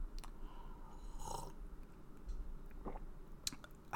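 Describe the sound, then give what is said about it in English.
Someone takes a sip of bourbon from a glass, with a few soft, wet mouth sounds and quick slurps scattered over a quiet background, and no talking. “So what I'm going to do is I'm going to insert the bumper here and take a sip of bourbon.”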